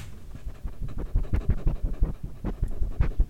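A dog named Lucy pants and snuffles, a quick, uneven run of breathy huffs and sniffs lasting a few seconds, with no one talking.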